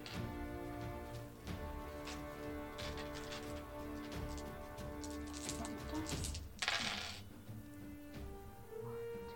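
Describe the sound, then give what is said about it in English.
Dice rattle and clatter across a surface in a quick burst of sharp clicks, rolled for a manipulation and streetwise roll in a game, heard over steady background music with no one speaking. “Go ahead and make me a manipulation and streetwise roll.”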